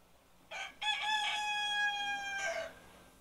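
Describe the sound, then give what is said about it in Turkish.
A single rooster crows once, loud, a long rising then sustained cock-a-doodle-doo lasting about two seconds with no talking. “Sabaha haber veren horoz iki kez ötünce kan dökülecek.”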